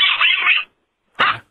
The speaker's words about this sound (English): It's a dog.